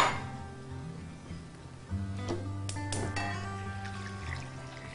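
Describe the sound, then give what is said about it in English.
Water pours steadily into a saucepan holding pieces of celery root, covering them, its hollow ringing tone climbing as the pan fills, with a few sharp clanks and splashes along the way. No one speaks. “Get this into a saucepan big enough to hold it and cover it with water.”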